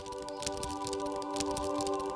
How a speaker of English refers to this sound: You can listen to this. Listen to this sleeve. It's the rice paper sleeve that Capitol was using.